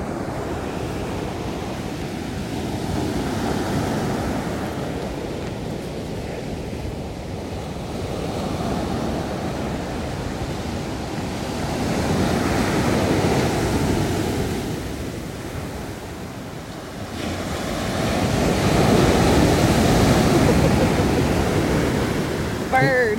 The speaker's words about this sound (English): You just hear the soothing sounds of the ocean at Carmel by the Sea and you and me talking. Yeah. It's about soothing.